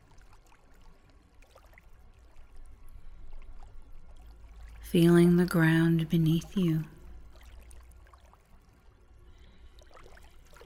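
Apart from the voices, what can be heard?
gently flowing stream water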